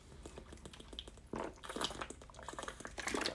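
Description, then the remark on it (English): Soft mouth and liquid sounds, a few quiet slurps and swallows of someone sipping water, with faint clicks and no talking. “Give me a sip of water, and we'll break it down.”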